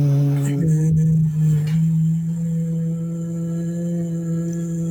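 A group hums together in a yoga pranayama breathing exercise, tongues pressed hard on the roof of the mouth and hands pushed together in the Anjali Mudra position, a steady, sustained low drone, the pitch settling after a brief shift near the start and holding evenly at a moderate, unbroken level.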